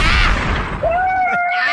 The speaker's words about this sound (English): We need some gunshots today.